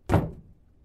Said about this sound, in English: She tries the knob, but it's locked.